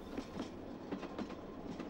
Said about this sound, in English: The particular train on which we're travelling only needs to have one coach because it's the early morning taxi for railway personnel.